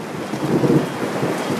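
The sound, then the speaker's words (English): A low, rolling rumble of thunder swells briefly over steady rain noise, fairly loud, with no voices present. “I don't like the rain hitting me, but I like the thunder giving an amen.”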